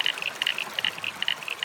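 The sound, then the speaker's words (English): Creek water burbles and trickles steadily, with quick bright splashy flickers rising over a soft rushing background; moderately quiet, and no voices. “I love the sound of the water in the creek too.”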